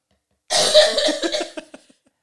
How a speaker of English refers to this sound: Sorry, can I get all these coughs out?